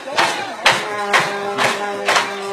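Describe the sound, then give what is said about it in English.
The crowd at a softball game claps together in a steady, rhythmic beat, five or six loud bursts about half a second apart, over a continuous murmur of voices in a lively outdoor stadium. “Man, listen to that crowd.”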